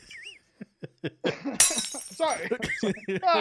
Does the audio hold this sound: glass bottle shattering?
yes